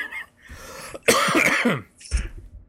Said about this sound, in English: Still coughing? Yeah, I know. It's been the whole week.